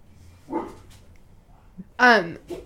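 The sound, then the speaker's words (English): Dogs bark in two short bursts, a softer yelp first and then a louder, high-pitched bark that slides downward, with a faint whiny sound trailing at the end. “Our dogs are assholes. Hey, dogs are doing dog shit.”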